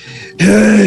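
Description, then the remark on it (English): A voice imitates the heavy, worn-out panting of someone who has just climbed up onto a rock: a soft breath, then one loud, breathy groaning exhale held for about half a second. “You managed to get up there, but you're panting. You're like...”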